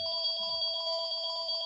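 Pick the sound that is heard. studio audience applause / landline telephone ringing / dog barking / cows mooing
landline telephone ringing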